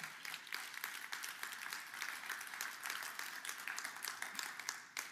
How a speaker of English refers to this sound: If you believe it, I wish you'd clap your hands.